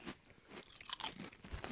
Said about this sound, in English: Mmm. Mmm. Good crunch.